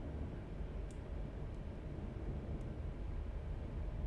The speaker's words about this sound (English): That airplane comes through on the hizzy.